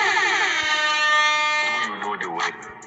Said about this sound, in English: Let me sound that alarm.